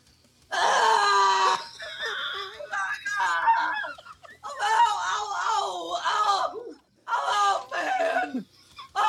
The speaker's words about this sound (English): After a brief moment, Ricky plunges the knife into his left leg deep. The three of them stare at each other, Lucius and Cal both cringing. Ricky instantly regrets the decision and screams to high heaven.